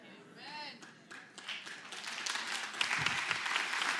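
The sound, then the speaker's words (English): Church audience applause during a sermon swells from scattered claps into a dense, steady wash of clapping, with crowd voices and a brief rising whoop near the start. “And for some reason, that never gets as much applause.”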